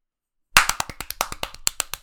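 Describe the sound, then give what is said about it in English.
Silence, then sudden applause from an audience after about three seconds of silence: a quick burst of sharp, crisp claps, about a dozen in a second and a half, slightly uneven in rhythm, with no voices. “And then after 3 seconds of silence, we'll count together in our heads. We will applaud for Jamie.”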